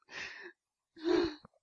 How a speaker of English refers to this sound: Oh, the laughing's making me cough.